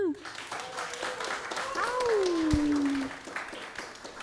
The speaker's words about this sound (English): How about a round of applause for Cat and Cloud here at The Crown, y'all?